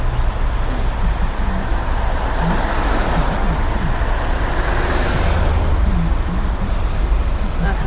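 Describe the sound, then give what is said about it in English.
Steady, loud road traffic rumbles while a cyclist waits at a traffic light, with vehicles passing and a low engine drone filling the whole stretch, no voices heard. “Like too much traffic to go around.”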